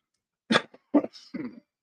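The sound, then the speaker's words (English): A fairly quiet run of two short, harsh coughs followed by a rough, gravelly throat clearing from a person who has a cough and cold, with no talking. “Excuse me, I've had a little bit of a cough and cold lately.”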